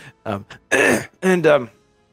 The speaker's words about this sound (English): I meant to like cough away, but I coughed directly into the mic.